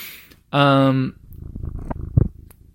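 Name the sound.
cat purring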